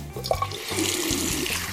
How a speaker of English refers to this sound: All right, there you go. He's washing his hands.